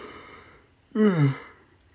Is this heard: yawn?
yes